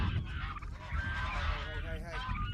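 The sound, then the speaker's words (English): A flock of geese honks loudly and continuously, their harsh, overlapping calls rising and falling over a rumbling low background with no talking. “The geese seemed to take it as a kind of personal affront to my dignity.”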